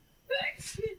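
A single person's sneeze, close and fairly loud: a brief rising vocal intake snapping into a sharp breathy burst, then a short trailing sound before quiet.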